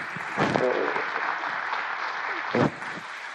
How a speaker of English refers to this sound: You clap.